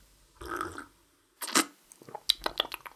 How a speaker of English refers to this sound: Victory sip.